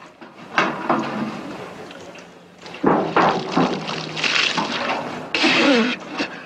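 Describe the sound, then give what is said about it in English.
Liquid pours into a glass in a few close, splashing bursts, gurgling and hissing, with the pitch rising toward the end as the glass fills. “Shall I pour?”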